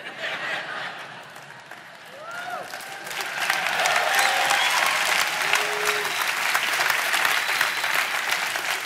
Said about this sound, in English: Don't clap too long, I can't hold my breath that long.